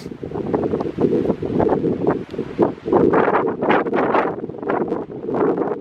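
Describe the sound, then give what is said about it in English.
Steady, rough wind buffets a microphone outdoors in Patagonia, a loud, continuous low rumble with gusty swells and hissy bursts that rise and fall throughout, with no voices present. “But apologies in advance if there's a bit of wind noise on today's episode because Patagonia is really quite windy.”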